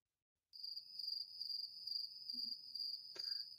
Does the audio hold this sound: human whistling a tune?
no